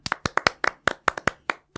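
A small group claps briefly, about a dozen sharp, slightly uneven claps in quick succession, fairly loud, with no voices over them.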